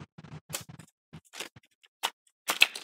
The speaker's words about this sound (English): I could hear you turning the pages. I was just waiting.